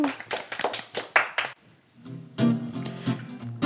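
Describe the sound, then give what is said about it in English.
A quick round of applause: a burst of steady hand clapping, about eight sharp claps in a row, stops abruptly; after a short pause, a brief musical passage plays. “How about a quick round of applause?”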